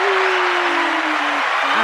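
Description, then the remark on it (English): An applause sound effect played by a show host: a burst of crowd applause, dense and steady clapping filling the whole stretch at a loud, even level, with a faint tonal hum gliding slightly downward beneath it. “I put the applause on.”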